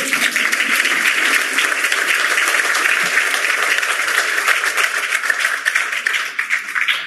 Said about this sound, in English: You guys can applaud for him.